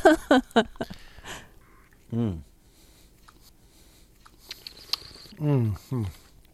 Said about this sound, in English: Pardon me if I'm slurping here and gurgling, but I'm trying to put a little oxygen on this.